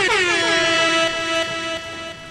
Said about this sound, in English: What you got for me? Give me some horns.